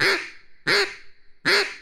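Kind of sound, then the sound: bird, duck quack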